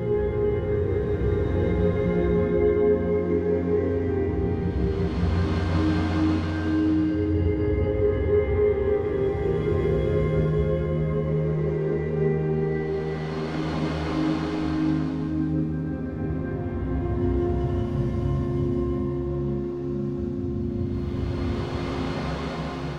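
A beat slowed down to 25% with Reaper's new time-stretching algorithm smears into a continuous, droning wash like a long reverb tail, with layered sustained tones and soft hissy swells rising roughly every eight seconds. No voices.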